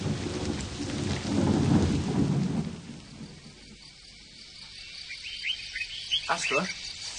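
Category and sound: nature, heavy rain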